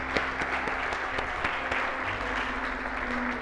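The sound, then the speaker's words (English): An audience applauds steadily for baptism candidates at a church service, a dense wash of many hands clapping at moderate loudness with a few sharper individual claps standing out, continuing evenly throughout without any talking. “Can we give them one more round of applause?”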